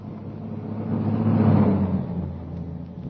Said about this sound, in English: The timing was perfect. As the car stopped, the first post office van was already approaching.